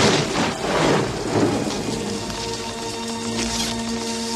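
Heavy rain from a rainstorm at night pours down steadily, a dense hiss filling the scene, while deep thunder rumbles low underneath, swelling early and rolling on without any voices.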